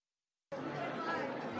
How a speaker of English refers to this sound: You'll hear some background noise during these interviews, and that's just the sound of the crowds that were there. There was quite a few people going from booth to booth.